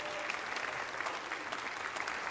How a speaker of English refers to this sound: Can we just give Jesus a good hand clap of praise this morning? Amen.